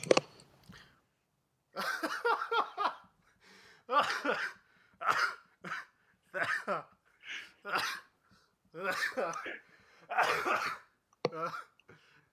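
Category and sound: human body sound, coughing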